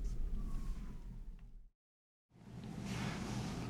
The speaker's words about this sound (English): It doesn't escape my notice that while I'm recording that little bit, there's a police siren wailing in the background of the New York City night.